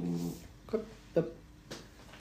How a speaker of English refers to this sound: If anybody can hear a growling noise, it's not my belly, it's Aussie dog deciding that somebody going past the window, he should be growling at.